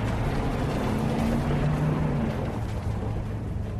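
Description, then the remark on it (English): A car-start sound effect from a sound effects library: an engine rumbles loudly and steadily, a low droning hum with a faint rising-then-settling tone, with no voices over it. “So it's literally like, okay, car start.”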